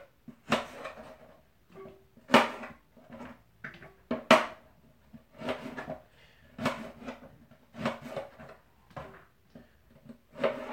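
A knife julienning carrots lengthwise on a cutting board: a steady series of sharp, crisp chops, roughly one per second, each with a short woody knock, with no one talking.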